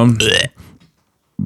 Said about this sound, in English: oh, I got to burp. Go ahead. Or throw up.